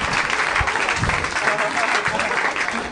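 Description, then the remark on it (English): A crowd applauds Joel McHale steadily, dense clapping at a loud, even level for the whole stretch, with a few indistinct voices mixed in underneath. “Joel McHale, everybody, give a round of applause.”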